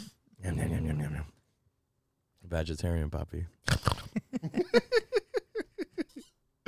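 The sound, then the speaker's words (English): After a short spoken phrase, a person imitates a pig: a drawn-out vocal squeal, then a quick rhythmic run of about a dozen short, snorting grunts. “Was that a pig sound? I'm a pig.”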